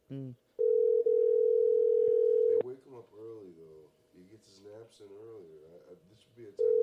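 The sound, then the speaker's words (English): An outgoing phone call rings and goes unanswered: a steady two-second ringback tone, a pause filled with people talking, then the next ring starts at the end. Clear, as if over a speakerphone. “If Bert doesn't answer the phone”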